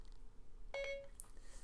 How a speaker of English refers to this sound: That was my Siri going off in the background. I accidentally held in the home button on my phone.